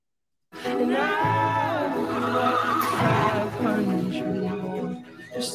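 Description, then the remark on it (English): Horses neigh and whinny loudly in a Budweiser commercial, one long wavering cry running into more overlapping whinnies, continuous for several seconds with no talking. “Horses come out and protect the dog from the wolf.”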